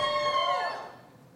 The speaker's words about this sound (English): What's all that squeaky noise? it's just the walls creaking. We're in Atlanta.